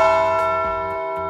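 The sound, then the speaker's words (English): A large bell rings loudly with a rich, sustained toll, its layered overtones ringing steadily and slowly fading across the short moment, with no voices present. “Patch the bell.”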